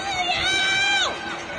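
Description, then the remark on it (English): At night in Shanghai, a woman screams out of a window, reportedly "Give me back my freedom"; her high, sustained scream holds a steady pitch for about a second, then slides downward and fades, over a low wash of crowd noise and background murmur. “There's a tremendous clatter of noise coming because people”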